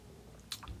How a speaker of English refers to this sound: I'm on some wine stuff today. So if you're seeing this on YouTube or you listening, you know what I mean? You gonna hear me take a sip, see me take a sip here and there. I'm on some wine shit.